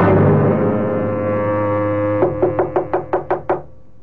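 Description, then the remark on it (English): A quick run of about seven firm knocks on a door, evenly spaced, rising out of a low, steady droning tone that fades beneath them. “Oh, madam, I had no idea this was your door.”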